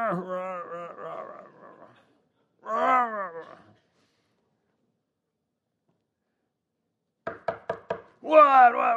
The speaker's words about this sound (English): I'm going to go knock on the Stauffer's door. And I can just hear it now.